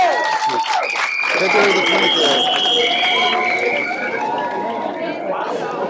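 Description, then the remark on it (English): A large crowd cheers and applauds loudly for several seconds, a steady roar of clapping with shouts and high whoops riding on top, fading slightly toward the end. “Wow, what a response from the crowd down here.”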